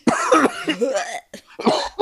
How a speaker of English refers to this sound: Excuse me. You coughed that shit out. Oh, the old man coughed. Excuse me.